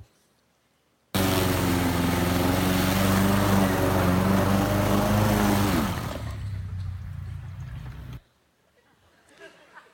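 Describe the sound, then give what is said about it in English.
A newly bought riding lawn mower from Lowe's, giving off heavy smoke, runs loud with a steady droning hum, then drops to a quieter idle before cutting off abruptly, leaving near silence. “Check out this video of the smoke on my mower.”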